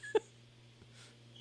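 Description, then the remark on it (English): A puppy gives one brief, high-pitched whimper right at the start, fairly clear, followed by quiet room hum and faint background rustling. “That's a puppy dog.”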